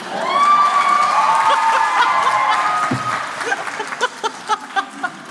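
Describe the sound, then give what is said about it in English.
A crowd in a courtroom cheers and applauds loudly, with a high sustained whoop riding over dense clapping that thins into a few scattered, distinct claps at the end. “I feel like there's nothing you could do here now that wouldn't get applause.”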